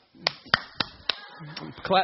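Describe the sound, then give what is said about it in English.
Four sharp, evenly spaced hand claps from the speaker clapping for himself ring out in a steady rhythm, followed by a short stretch of voice toward the end. “I'm clap myself.”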